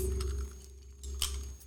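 Glasses holding a freshly made drink garnished with raspberries and mint clink together in a toast, a couple of short bright chimes, with a low steady hum underneath and no talking.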